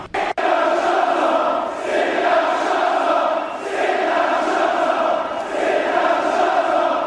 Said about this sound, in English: Boo. This event. Obviously, a hostile crowd is there in London. Yeah. Well, who the fuck is going to go for Mayweather?